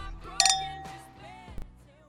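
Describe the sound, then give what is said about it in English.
Glasses clink together in a toast, a bright ringing chime near the start, followed a second later by a softer knock, set against a low murmuring room background. “Cheers, everyone. Cheers. Cheers.”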